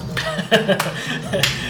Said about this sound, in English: Yeah, so you take a throw with your javelin and it completely misses, goes right past them. I'm gonna slow clap.